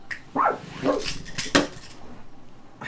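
A dog barks in a few short, sharp bursts spaced about half a second apart, with a faint clatter of dishes in the background and no talking.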